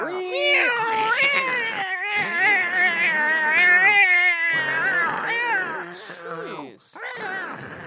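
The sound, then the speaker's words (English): Human voices mimic a cat fight, wailing and yowling in long, warbling, rising and falling meows that overlap loudly and continuously, like two cats squaring off. “Cat fight.”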